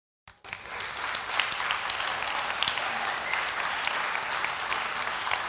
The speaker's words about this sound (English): And I totally assume you're clapping for David's words on that one.